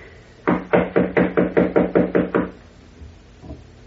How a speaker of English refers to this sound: Ah, here is her suite. I will knock. She must be asleep. Knock again, please, will you?